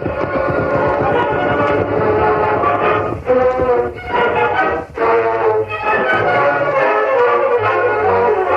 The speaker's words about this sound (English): just beyond the rise. That's the westbound train. Left Big Springs over 30 minutes ago.